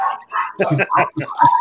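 dog barking

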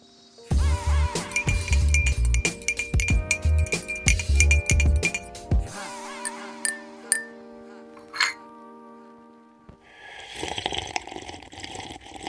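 teacup clinking

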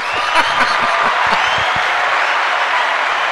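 applause sound effect

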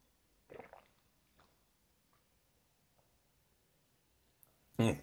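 sipping water

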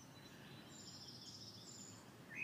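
birds singing

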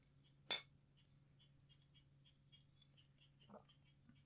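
glasses clinking

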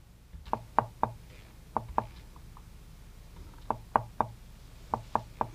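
knocking on a door

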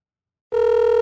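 telephone dial tone

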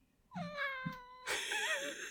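cat meowing

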